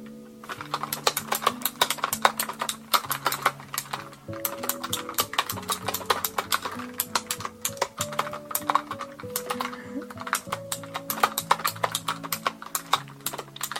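Rapid, clicky keyboard typing: a dense, irregular stream of sharp clacks with no pauses, running steadily over a soft, low melodic tone that shifts pitch. No one speaks.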